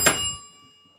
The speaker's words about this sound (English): I need to figure out the bell button. The bell. I kind of grabbed it out of the pile and plugged it in just for this